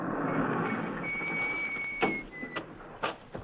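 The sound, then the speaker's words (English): A small side door slides along its track with a long, thin metallic squeal, then a few sharp knocks and clunks as it moves and settles, with no talking. “It's a little side door.”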